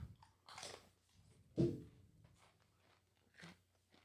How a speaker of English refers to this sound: Okay. Well, I'll eat a chip.